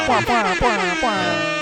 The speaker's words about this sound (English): Put in some air horns there.